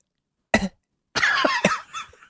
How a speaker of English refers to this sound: But ultimately, they went with the story about Zoolander coming from a Pennsylvania coal mining town. Do the cough.